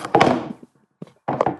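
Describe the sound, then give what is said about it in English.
A phone drops onto a hard surface with a loud, clattering thunk, followed by a brief soft tap and then a second rattling knock as it settles. No voices. “My phone fell, which means you're not.”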